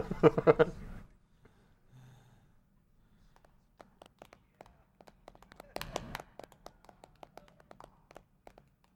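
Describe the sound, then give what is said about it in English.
A short burst of voices opens, then sparse, irregular hand claps follow, a few people clapping unevenly, briefly thickening at one point before thinning out again. “It's the only applause we'll get all night.”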